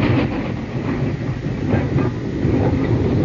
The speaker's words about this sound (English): Oh, yeah, that's a record of a train in West Virginia. It is. It's an authentic record of a train in West Virginia.